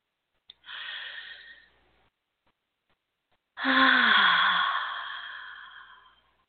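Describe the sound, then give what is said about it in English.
A breathy yawn: a short audible inhale, a pause, then a long, loud exhale with a low voiced groan that sinks in pitch before trailing off. “As big of an inhale as you can take, and then just hold it for a second, and then let it blow out, okay?”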